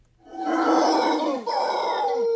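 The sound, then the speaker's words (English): A loud, sustained guttural howl from a howler monkey in the Amazon jungle, rough and roaring, with a brief dip midway before the bellowing resumes, dominant with no talking. “There are also howler monkeys there, and howler monkeys are incredibly loud.”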